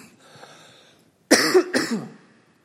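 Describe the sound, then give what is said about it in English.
Two harsh, loud coughs in quick succession, slightly raspy, from a speaker with lung scarring from cancer and chemotherapy, following a moment of near silence with only faint background noise. “Excuse my cough.”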